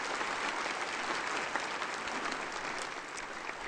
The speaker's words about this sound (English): Would you give her a round of applause for her great ministry here?